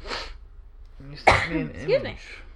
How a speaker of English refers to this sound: Excuse me. I sneezed.